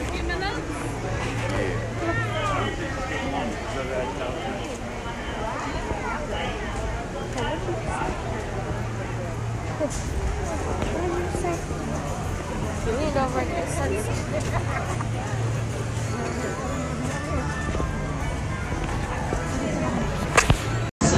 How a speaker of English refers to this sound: This is the ambient noises for the Jungle Cruise queue. The queue to Jungle Cruise.